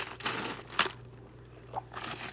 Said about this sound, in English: As I take a drink of water.